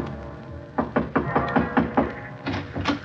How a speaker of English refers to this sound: I wasn't sure who or what I would find in that beach house, but I was sure no amount of talk could persuade Mr. Dixon to leave until I did. I knocked on the door for a good minute before it finally opened.